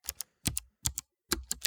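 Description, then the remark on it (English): Quick typing on a computer keyboard: crisp clacking keystrokes come in short bursts of two or three with brief pauses between, no voices. “You're typing like crazy.”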